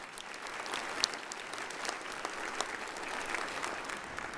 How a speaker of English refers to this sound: So we rejoice, and let's just give our greeters a big round of applause.